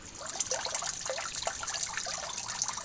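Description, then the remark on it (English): Steady rain patters down just before a performance, in a dense, even hiss, with countless small droplet taps scattered throughout at a constant moderate level. No voices are heard. “It started raining just as the performance was about to start, so it made it a little bit harder to hear the sounds, like the other sounds, so to speak.”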